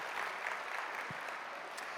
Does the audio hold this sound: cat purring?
no